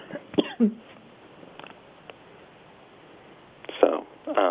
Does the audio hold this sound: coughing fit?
yes